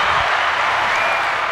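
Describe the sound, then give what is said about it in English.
A steady wash of applause, dense and loud, with many hands clapping together in a continuous hiss-like roar that neither builds nor fades. No one speaks over it. “Round of applause, titties. These are the long round of applause, too.”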